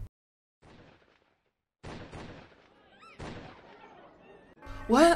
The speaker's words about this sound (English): What? That's noise? I think it's gunshot. My god, dude, you probably do too much game. How can there be gunfire in the school?